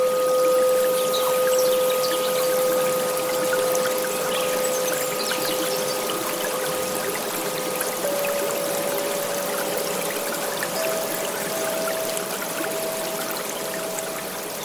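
nature, babbling brook water flowing

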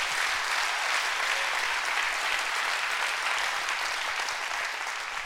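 crowd, audience clapping hands

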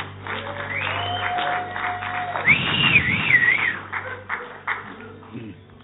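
crowd, audience applause and whistling

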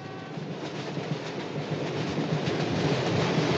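vehicle, train rolling on tracks

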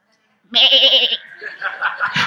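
animal, sheep bleating

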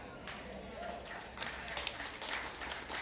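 crowd, audience applause

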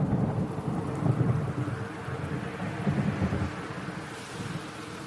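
nature, thunderstorm with rain

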